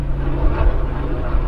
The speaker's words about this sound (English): Another helicopter circling above. Thank God I'm not paranoid.